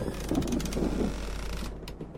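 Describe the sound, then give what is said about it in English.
A door knob is jiggled and twisted repeatedly as someone tries to open a door that won't budge, giving a quick series of rattling mechanical clicks for under two seconds before falling quiet. “I kept jiggling the knob, thinking I hadn't turned it enough.”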